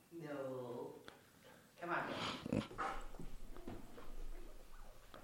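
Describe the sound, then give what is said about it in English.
A dog named Eli makes a drawn-out whining cry, then breaks into a few sharp, loud barks and growly yelps, with faint voices in the background. “Eli was down there barking.”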